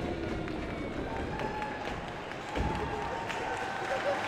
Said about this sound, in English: No matter the age or experience level, the response from the crowd remained the same for all of the dancers and performers. Joyous applause.